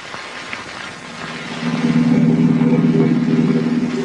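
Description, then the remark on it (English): A car engine idles with a low, steady hum, then grows louder and rougher partway through as it revs and pulls away, rumbling with no voices. “The car's over here.”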